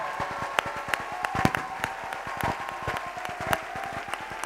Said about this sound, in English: I want you to clap your hands to Jesus one more time tonight and give Him a victorious shout. Of praise.